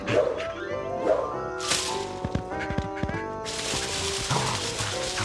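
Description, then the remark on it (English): A playful dog, Spike from the show, barks and yips in quick, excited bursts while playing with a rubber hot dog, fairly loud, followed by a stretch of steady rustling noise toward the end as it goes into a pile of leaves. “Another great thing that this show captures is the way dogs play, like Spike playing with that rubber hot dog.”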